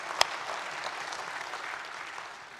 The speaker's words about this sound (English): I want to say thank you, ladies. I understand the breakfast was out of this world. And, you know, the men always eat better than the women do. go ahead and give those ladies a good big hand clap, all right? Thank you.